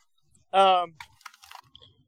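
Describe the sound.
A short burst of voice, then a series of sharp mechanical clicks and light rattles as a newly assembled 10.5-inch AR pistol is handled, the clicks coming in quick, irregular bunches.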